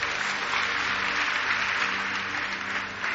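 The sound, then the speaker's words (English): An audience breaks into sustained applause for Jesus Christ during a sermon, dense overlapping clapping that stays steady and loud throughout with no voices standing out. “Clap for Jesus Christ.”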